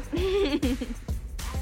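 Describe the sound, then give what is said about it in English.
A small Yorkie terrier at a photo shoot whimpers in a wavering, high-pitched whine, then lets out a few short, sharp yips. Moderately loud, with no talking. “Now Bit and her Yorkie are there at the photo shoot.”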